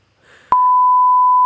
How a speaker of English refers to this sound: Can we beep it? Can you just tell us and you can beep it?